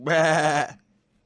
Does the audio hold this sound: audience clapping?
no